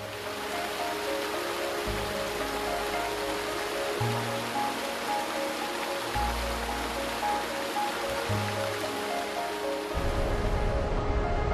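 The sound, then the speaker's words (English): Steady, continuous rush of flowing water fills the whole stretch, even, with low droning tones shifting in blocks beneath it and no voices. “Water is the driving force of all nature.”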